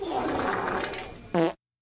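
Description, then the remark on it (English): A long, raspy, sputtering fart runs for over a second, then ends in a short, louder, buzzy blast before cutting to silence. There is no talking. “Let's laugh at some farts while we're here, huh?”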